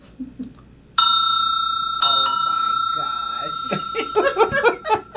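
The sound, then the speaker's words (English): A small, bright bell is struck twice, about a second apart, each clear ring lingering and fading slowly, before laughter and giggling break in over the dying tone. “And each time I even went through and I found a little bell. You ready to hear my little bell?”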